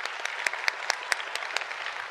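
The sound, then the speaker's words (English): An audience, asked to clap together, claps steadily, sharp unified claps landing in a fast, even beat about four or five per second over a continuous wash of scattered applause. No one speaks. “Okay, now I want everybody in here to begin to clap.”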